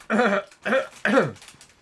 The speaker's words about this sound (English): And just do a proper cough. We'll take it out later. I was coughing to cover the proper one.